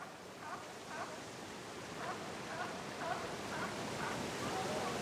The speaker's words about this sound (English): We leave you this week on the coast of Northern California, where ocean waves mix with the cries of seabirds and marine mammals that inhabit the rocky shoreline.